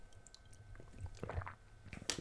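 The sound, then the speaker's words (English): A quiet sip of cold water: soft wet mouth and swallowing sounds, a few small gulps and lip smacks ending in a brief louder slurp, with no one talking. “Ooh, that water cold.”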